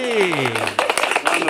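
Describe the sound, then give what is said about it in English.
A falling, voice-like tone gives way to a short burst of dense, crackling applause, many quick claps blending together for under a second, fairly loud. “Big round of applause going out to Michelle Crabtree.”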